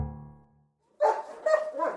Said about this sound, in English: We're going to have to do a sound off. Sound off. So stay in your characters, please, and sing a super high note.